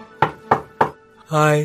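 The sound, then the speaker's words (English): Three evenly spaced, firm knocks by a little spotted cat on a dark chocolate door, with a brief pause before a voice begins speaking. “And the little spotted cat went up to knock on the dark chocolate door.”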